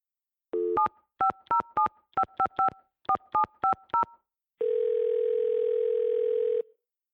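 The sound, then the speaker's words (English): A quick run of about a dozen touch-tone keypad beeps in short clustered bursts, followed by a steady, clear telephone dial tone holding for a couple of seconds before cutting off. “I'm on the phone in my room, which I think is on the third floor.”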